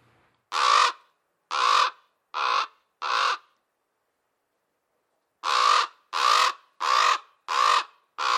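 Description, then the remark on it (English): A raven croaks in two bursts: four harsh, evenly spaced calls, a pause of about two seconds, then a faster run of five. The calls are loud, with no talking. “Now, last but certainly not least, this show is brought to you by this week's animal ambassador, the raven.”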